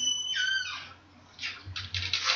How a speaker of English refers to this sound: That was a horrible creaky noise. That was my door. Yeah. That was creepy.